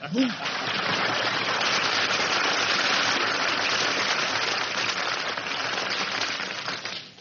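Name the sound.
audience applause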